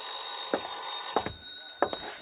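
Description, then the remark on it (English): A telephone bell rings steadily, a sustained high metallic jangle punctuated by three brief, louder pulses roughly every two-thirds of a second, with no voices. “I was just tying my time when the phone rang.”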